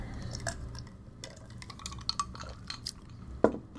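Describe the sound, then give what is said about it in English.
Ice cubes rattle and clink against a glass in a scatter of short, bright knocks, with one sharper clack near the end over a low background hum. “I'm getting some of these rattles of these ice cubes.”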